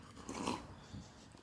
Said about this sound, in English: Anywho, so one sip of coffee. I can have a physical sip of coffee as I'm talking to you.